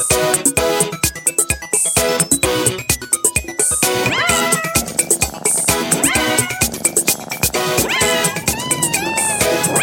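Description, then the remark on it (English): A bouncy, upbeat music jingle made for Lego's social media, with steady beats, layered with repeated cat meows whose pitch swoops up and down in time with the tune, loud throughout. “They said, can you make it annoying with cats? And I said, I can do half of that and I can definitely work on the cats part.”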